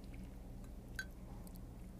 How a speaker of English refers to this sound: I need a sip of my coffee right now because I'm staring at it. Sorry.